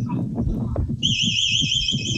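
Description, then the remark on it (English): A home security alarm, recorded by a home security camera at night with the doors locked and the alarm armed, kicks in partway through, a loud, steady electronic siren with a warbling high pitch, sounding over low rumbling background noise. “And you can basically hear the alarm starts to go off.”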